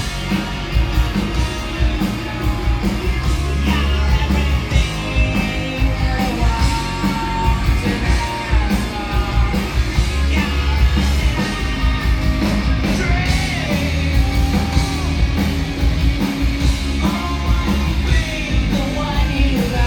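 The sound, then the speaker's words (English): A live concert crowd yells and cheers continuously over loud, dense music at the first live performance of a song, with shouts and whoops rising throughout the twenty seconds and no spoken words. “What resonated to you, or like what stood out to you about hearing the crowd react to that, or knowing that this was the first time that this was being heard live?”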